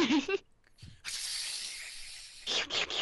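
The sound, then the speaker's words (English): A voice imitates a snake's hiss with the tongue: a short breathy sound, then a long steady high-pitched hiss of about a second and a half, then a few shorter hissy bursts. “Fun fact about that little hiss thing that he did with his tongue.”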